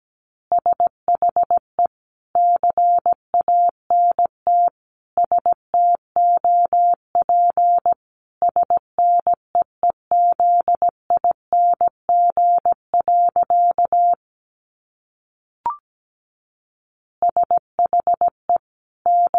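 Morse code sent at 17 words per minute: a single steady mid-pitched beep keyed into crisp short and long pulses, broken by a pause with one brief click before the keying resumes.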